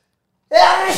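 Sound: sneeze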